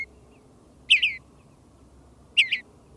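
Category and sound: bird, bluebird song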